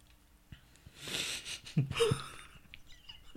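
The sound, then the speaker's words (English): A person yawns, a long breathy inhale swelling into a brief voiced groan before trailing off, with no talking around it. “As you're yawning, dick.”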